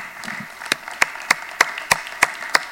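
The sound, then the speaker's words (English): A church crowd applauds to honour the standing volunteers who serve on its teams, in a steady wash of clapping, with sharp, evenly spaced claps punching through about three times a second in a regular rhythm. No one speaks. “Let's give them a round of applause, guys.”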